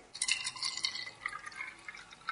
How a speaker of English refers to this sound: So we take our egg, a nice free-range egg, going to put this into a cup or a jar, and now we're going to pour on white vinegar.